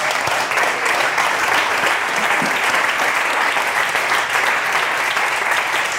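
An audience claps steadily and loudly for several seconds, a dense, continuous wash of applause without pauses or voices standing out.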